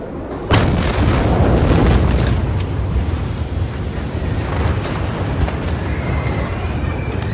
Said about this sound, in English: According to reports, upwards of 40 cases of fireworks were also being stored inside number 12, mere steps from the ammonium nitrate. Roughly 30 seconds after the first explosion, the massive stockpile of the chemical compound detonated.